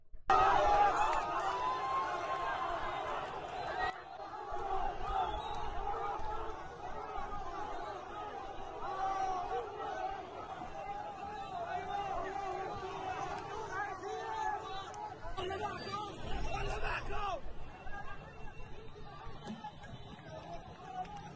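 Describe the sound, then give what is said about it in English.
A dense crowd of Palestinians in a street in Gaza chatters, cheers and calls out continuously outdoors, reacting to Hamas militants carrying the bodies of killed Israeli women; many voices overlap into a loud, steady hubbub with occasional raised shouts rising above the babble. “Here are the Palestinians recently reacting to the Hamas terrorists carrying the trophy bodies of raped and murdered Israeli women through their enclave.”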